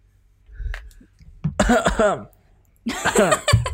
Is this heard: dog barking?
no